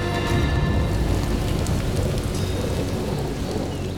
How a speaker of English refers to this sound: A light rain began to fall.